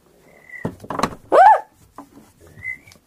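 A pen drops onto a table with a short, bright clatter of light taps. A loud, high, swooping vocal cry follows immediately, with faint thin whistle-like tones before and after.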